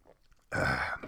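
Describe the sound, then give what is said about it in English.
Someone sips a NOS energy drink: a few faint, soft mouth sounds, then a sudden loud, rough, breathy gulp and exhale lasting about half a second, with no talking. “Let me take a sip of my NOS energy drink.”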